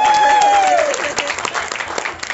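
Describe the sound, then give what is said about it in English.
An audience breaks into loud, steady applause for the performer's parents seated at the front table, dense clapping throughout, with a brief falling whistle-like tone riding over the start. “Give my parents a round of applause.”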